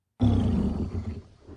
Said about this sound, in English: She heaved the huge lid open and peeped in. There was something furry in there. And it growled.